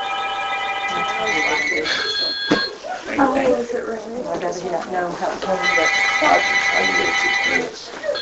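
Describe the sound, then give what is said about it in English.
A telephone rings in two long, bright electronic bursts, one at the start and another near the end, with people talking in the gap between the rings. “Is there a phone over there somewhere?”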